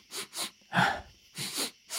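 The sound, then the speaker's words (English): A voice imitates a character sniffing another character: a quick series of about five short, breathy nasal bursts in an uneven rhythm, one louder and snortier than the rest, with no speech. “So he's like, he quickly like looks at Rufus and starts sniffing him.”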